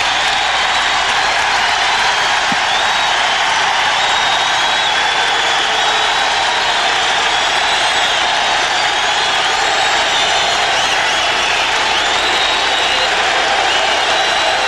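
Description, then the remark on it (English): A large arena crowd gives a pregame standing ovation of over two minutes welcoming back Bernard King, with loud, dense applause and cheering that roars steadily without a break for the whole stretch, with no individual voices standing out. “He received a 2+ minute standing ovation from the crowd pregame.”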